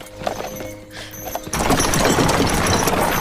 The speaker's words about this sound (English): So here's the horse and carriage. Let's see if we can find the, it's not until later in this scene, but this is the scene where the horse wrangler will be in here somewhere.